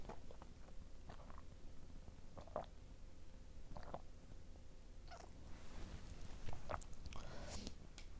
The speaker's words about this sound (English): Let me get a sip of my coffee so you guys can bear with me for the rest of this shit.